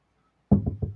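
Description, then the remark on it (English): Four quick, hollow knocks on a wooden surface, fairly loud, in an even rhythm after a brief silence. “I know this makes for bad audio.”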